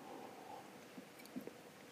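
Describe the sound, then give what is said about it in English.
A quiet sip of whiskey: a few soft wet mouth noises and a small slurp near the end, with no talking over a faint background hush. “I will just have a sip of whiskey to get my head together about warning signs.”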